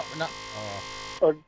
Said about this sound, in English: there's a buzzer.